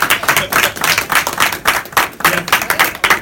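An audience claps together in a steady, dense burst of applause, loud, with no talking over it for the few seconds it lasts.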